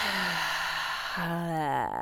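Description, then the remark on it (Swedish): A deep breath drawn in through the nose, filling the belly with air, then let out through the mouth in a long audible exhale that turns into a soft voiced sigh, falling away at the end. “Vi andas in genom näsan, fyller upp magen med luft. Och bara låter andetaget åka ut genom munnen.”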